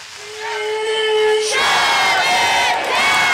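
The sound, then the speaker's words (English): Striking Los Angeles Unified School District workers (custodians, bus drivers and teaching aides) protesting at a district bus depot, shouting together, starting with a single long, steady-pitched tone before the group's loud, sustained yelling swells up and carries on without words. “These are some of the 30,000 LA Unified School District workers walking off the job today.”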